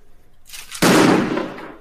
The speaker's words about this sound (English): Okay, that's a firework.